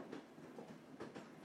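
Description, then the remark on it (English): Train wheels rattle over rail joints in a steady, rolling rumble, with faint rhythmic clacks rising out of a broad, continuous noise, heard as if from inside a moving carriage. “The carriage rocked gently from side to side. The wheels clacked over the tracks.”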